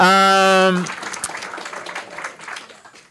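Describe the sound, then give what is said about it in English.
A short, steady buzzing tone cuts off, and an audience breaks into applause, a dense patter of many hands clapping that continues at moderate loudness and slowly thins. “And especially because, yes, you can clap. That's right. Clap your hearts out.”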